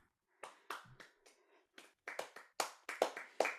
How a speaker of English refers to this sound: And that is our cue. The saddest golf clap. Well, I don't want to do it right in the microphone.